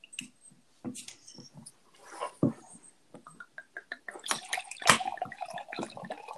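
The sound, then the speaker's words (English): Liquid splashes and gurgles as a drink is poured into a glass for a toast, with a few clinks and a pitch that rises as the glass fills, ending in a louder splash. “Ooh, I love the sound of that pouring.”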